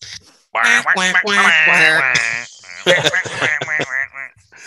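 A person imitates a duck with a raspy, quacking voice in a string of loud squawky bursts, pausing briefly before a few more quacky syllables.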